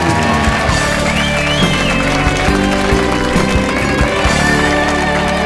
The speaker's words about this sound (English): give them a huge round of applause, everyone.